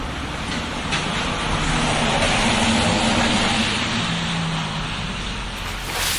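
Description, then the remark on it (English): A flagged-down bus rumbles as it pulls up to a stop, its steady engine drone and broad road hiss swelling slightly before easing off, with no voices heard. “I couldn't see walking 3 blocks, so I decided to flag down a bus.”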